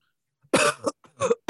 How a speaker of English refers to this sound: Sorry, I have a little bit of a cough. Are you choking over there already? A little bit.